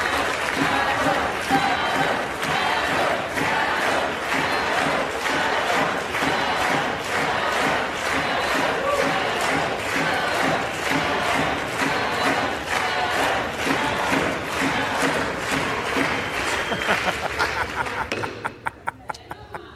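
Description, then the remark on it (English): Legislators in the US House of Representatives shout "shame" in steady rhythmic unison, repeated loudly over and over, then break near the end into a brief burst of clapping and a standing ovation, during the censure of Representative Adam Schiff. “They go from screaming shame to clapping and giving a standing ovation.”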